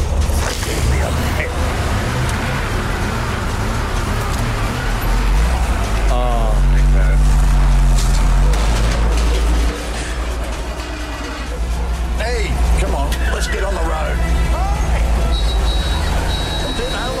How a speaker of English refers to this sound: Bit of crunching of the gears. Was that bins being knocked over? There was bins being knocked over. I think a car got run into. There was a few bunny hops in there as well.